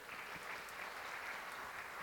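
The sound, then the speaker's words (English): An audience at a Sunday church service breaks into steady applause, a dense wash of many hands clapping at an even, sustained level with no voices standing out. “And I just want a round of applause for the fact that we've got people that are coming back every Sunday.”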